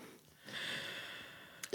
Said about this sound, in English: I feel like I've just been doing a lot of non-dirty heavy breathing during this podcast. Which is unusual to me. It is unusual. Right. Like, it's not uncomfortable heavy breathing. It's like just joyful and like proud.